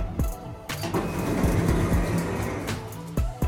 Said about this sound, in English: Doors closing.